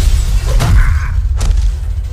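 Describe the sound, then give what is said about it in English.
Drake crashes through a glass window behind a Joker sniper across the street and knocks him out: two sharp, bright bursts, the second hissing as it fades, over a constant heavy low rumble, with a brief ringing tone between them. “Across the street, a Joker sniper had looked out for victims to target when Drake crashed through the window behind him and knocked him out.”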